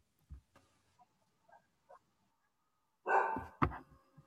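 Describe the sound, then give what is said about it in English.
A pet dog barks: a few faint, soft yips at first, then two loud, sharp barks in quick succession near the end. No one is talking. “this is Nala. They know my dog. She likes to sometimes just jump in and say a little”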